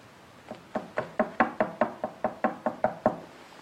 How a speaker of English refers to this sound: It's like a knock. Mm-hmm. Let's do a knocking trick so you'll knock a couple times and we'll see if you're something back.